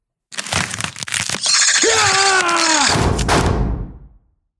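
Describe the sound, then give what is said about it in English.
A quick burst of sharp, cracking gunshots, then a loud ringing whine over rumbling noise that holds for a couple of seconds before fading out. No voices. “All right, you heard those gunshots.”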